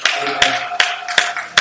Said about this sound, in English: Clap your hands for him.